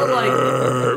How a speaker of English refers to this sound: I think, I can't remember. Is that him just like burping?